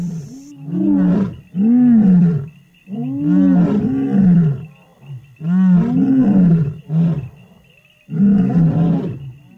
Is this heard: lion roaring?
yes